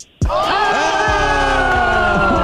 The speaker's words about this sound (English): I felt really awkward giving myself the crowd cheer, but... It deserved it.